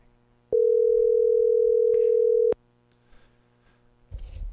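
A single steady telephone ringback tone sounds over the line for about two seconds as a call is placed to Mark McCloskey's phone, clear and evenly pitched, then cuts off, leaving faint line noise and a low rumble.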